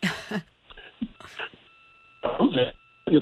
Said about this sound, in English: your phone is breaking up here. Can you go back to where you were?